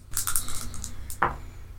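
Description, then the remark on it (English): Franchise dice rattle and clatter across a hard surface in a quick burst of clicks, followed by a sharper knock as they settle, over a low steady hum. “And because I'm doing it on the Haunter app, I think I'm going to use my franchise dice.”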